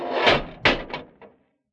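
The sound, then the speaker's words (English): Doors swing shut with a whooshing rush followed by a heavy thud and two softer, fading knocks, with no voices. “The doors, Dudley, they're closed.”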